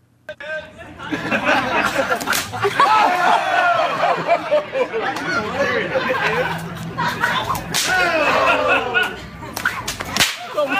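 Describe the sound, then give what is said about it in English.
Sharp, loud cracks ring out repeatedly as cornhole bags smack a wooden board while two players throw four bags, each impact sounding like a whip snap, while a crowd chatters, laughs and cheers throughout. “So you can hear how loud the whip cracks.”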